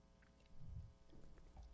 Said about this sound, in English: Take a little sip of water here.